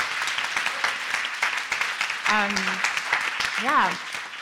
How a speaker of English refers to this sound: So, I mean, you guys, it takes a lot to get up here and pitch in front of everybody. So another huge round of applause for our pitchers.